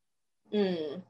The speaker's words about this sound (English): Okay, y'all. Oh my God, I'm yawning. I know y'all yawned a couple times, so.